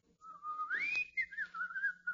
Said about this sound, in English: I can whistle it for you.